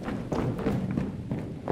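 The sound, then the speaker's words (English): Several people race down stone stairs, taking three and four steps at a time, a quick, uneven series of heavy thuds over a steady low rumble, with no voices. “Down we went, racing down the stone stairs, taking three and four of them at a time.”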